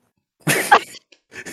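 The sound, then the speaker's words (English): A short, deliberate nervous cough acted out for a character in a tabletop role-playing game: a harsh double burst, a brief pause, then a softer, quieter cough-like clearing of the throat, with no talking. “Lola nervously coughs and is like, so how are you, Gingy?”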